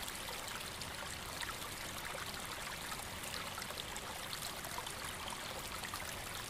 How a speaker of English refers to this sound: Continuing down the hill, the sounds of rushing water. It seems as though there is a raging torrent of white water somewhere not too far off.